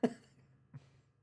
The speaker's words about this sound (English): Okay. Clear my throat.